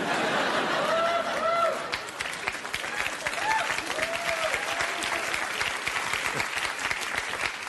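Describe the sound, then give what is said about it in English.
A crowd of white men applauds steadily throughout, a dense, even wash of clapping. A few short voiced whoops or cheers rise above it early on, then the clapping carries on alone at the same strong level. “Dickish white guys applauding.”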